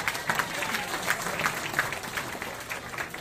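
A crowd applauds steadily, many hands clapping in a dense, continuous patter with small bright peaks, moderately loud throughout and without any voices rising above it.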